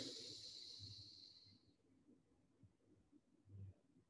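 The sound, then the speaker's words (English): A slow, deep breath drawn in to a count of eight: a soft airy hiss that fades out after a couple of seconds, leaving faint low murmurs and near silence. “But so he said that when you're breathing, so when I breathe to the count of eight, breathe in.”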